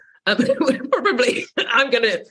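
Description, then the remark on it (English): Three loud bursts of throat clearing and coughing come in quick succession, each lasting about half a second with brief pauses between. There is no talking. “We'll try not to sort of cough too much.”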